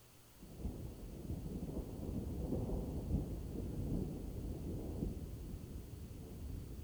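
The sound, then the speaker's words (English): A long, low rumble of thunder from an approaching storm over dark plains builds and rolls continuously, deep and sustained for several seconds, with a faint wash of rain or wind underneath and no voices. “As the storm comes nearer, it begins to rain.”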